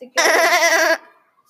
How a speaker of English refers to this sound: It's a goat.